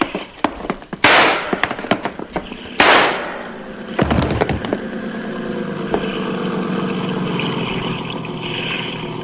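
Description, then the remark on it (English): Two sharp, loud gunshots fired by Yancey crack about two seconds apart amid scattered clicks and knocks, followed by a heavy thud and a steady engine-like drone that carries on to the end. “Yancey got two shots. The first one missed me.”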